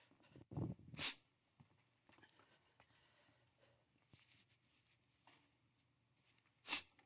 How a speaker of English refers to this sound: Pardon my sniffles.